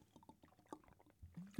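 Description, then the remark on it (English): Someone drinks a glass of water, with soft wet sips and a few gulping swallows in quick succession, ending in a low throaty gulp. Quiet overall, with no talking. “let's have a nice drink of water together”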